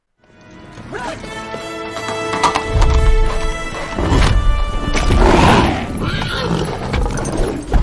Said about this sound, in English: We'll sort of have a listen to it playing out and then talk about the horse in that scene.